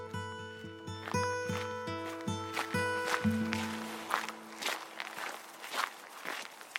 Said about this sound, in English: Yeah, I'm pretty sure the audio attenuation out here is going to be pretty good, but it's probably got some good background noise too. Lots of footsteps.